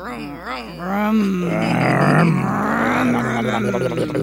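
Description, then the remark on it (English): A Harley motorcycle engine roars past, a loud throaty rumble whose pitch rises and falls as it revs, holding steady for about four seconds. “Actually, that's a car. We're actually... No, it's a Harley.”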